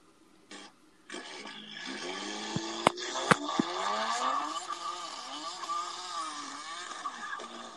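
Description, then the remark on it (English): Roaring engines rise in pitch as cars race by, one after another, loud, with a couple of sharp clicks early on and a steady rushing whine throughout. No voices. “Do you like with the cars going fast?”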